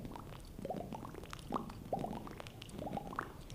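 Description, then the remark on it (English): Wet gurgling and bubbly squelches as the tongue pushes water out of a mouth full of water, with a few brief whistly pitched tones rising over the liquid sputter, no talking. “Pushing the water out.”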